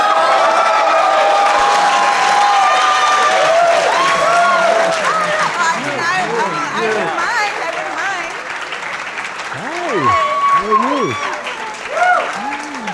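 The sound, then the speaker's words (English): A loud crowd applauds and cheers continuously for Tommy Chong, fresh off Dancing with the Stars, with many overlapping shouts and whoops rising above a dense wash of clapping that stays strong throughout. “I guess they didn't hear their names under the din that was the applause for Tommy Chong, who was here fresh off of Dancing with the Stars.”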